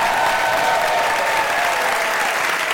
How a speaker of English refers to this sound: Ladies and gentlemen, I would like you to have a huge round of applause for Mr. Adam Savage.